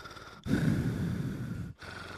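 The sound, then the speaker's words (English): A person who is feeling under the weather imitates heavy, wheezy breathing: one long, rough, drawn-out breath of about a second and a quarter, fairly loud, with a hissy rasp over a low rumble. No one speaks. “if you hear me breathing like the dude from, what was it, Hey Arnold, who's always in Helga's ear”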